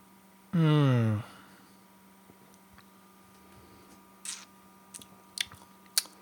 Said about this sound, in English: Anyway, let's take a sip. It's going to help soothe my sore vocal cords.